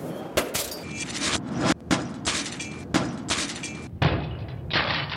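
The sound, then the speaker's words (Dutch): A bottle of wine from Alsace is struck hard against a doorpost of a parliament plenary hall in Strasbourg again and again until it smashes: about four sharp, loud bangs at uneven intervals over a steady noisy crowd-like rumble. “Ik weet niet wat het was voor fles drank, maar die sloeg die echt op de deurpost kapot.”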